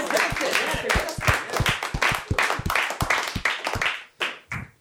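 Dense crowd applause, another round of applause for a participant, many hands clapping in a rapid irregular patter at steady volume, then thinning to a few last claps near the end.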